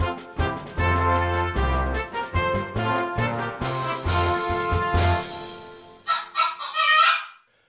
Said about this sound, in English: Now, if you suspect the main reason I chose the KFC story was for an excuse to use a chicken sound effect, you might well be right.